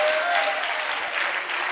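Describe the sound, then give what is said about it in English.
An audience claps together in a dense, steady burst of applause, many hands overlapping into an even, bright crackle that holds at a fairly loud level throughout. “Can you clap your hands and can somebody shout amen?”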